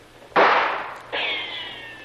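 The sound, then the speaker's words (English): Two loud gunshots about a second apart, fired at the listeners, one passing close enough to feel its breeze; each has a sharp crack and a long fading tail, and the second leaves a high, whining ring as it dies away. No one speaks. “Boy, they're not bad shots. Almost feel the breeze from that one.”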